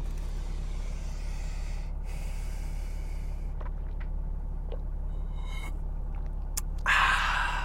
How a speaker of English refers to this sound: I'm going to take a sip of my beverage.